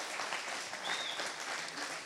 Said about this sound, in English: Can we give them just another round of applause?